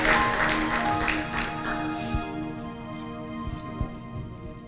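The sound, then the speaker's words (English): A church audience claps to give the Lord praise for the name of Jesus, a dense burst of many hands that is loudest at first and gradually thins out, with steady sustained musical tones holding underneath. “You ought to clap right there and give the Lord praise.”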